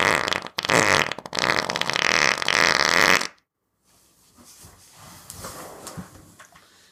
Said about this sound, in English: Are you laughing because I didn't acknowledge your fart or because I'm ill-prepared?